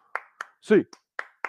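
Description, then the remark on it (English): Several sharp hand claps of an eight-count clap cheer for the UCLA Bruins land in a steady rhythm, about five heard, fairly loud, with a brief shouted voice breaking in between them. “That's why we need a good A clap, baby.”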